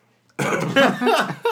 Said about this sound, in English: then he starts coughing. I mean, my boss has been seeing me coughing for a week.